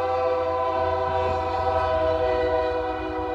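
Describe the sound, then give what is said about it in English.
A loud, sustained train horn blares steadily for a few seconds, its rich chord of harmonics holding without a break over a low rumble, with no voices. “Pain train.”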